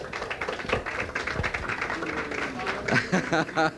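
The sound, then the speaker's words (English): An audience at the Half Note, during a live broadcast, breaks into a steady wash of clapping for a band, dense and moderately loud, with voices chattering and calling out through it as the applause carries on. “Nice hand for ….”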